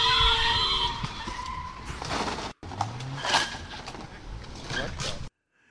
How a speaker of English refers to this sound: Came flying out of the street and straight into another car and then just took off. This is the most dangerous intersection and then bang. Bang, yeah.